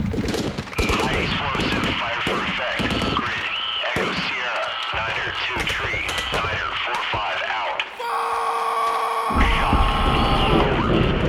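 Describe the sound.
An artillery and gunfire battle soundscape of dense, rapid gunfire bursts and heavy high-explosive artillery booms with shouting voices mixed in, giving way near the end to a steady, sustained tonal drone over continued rumbling.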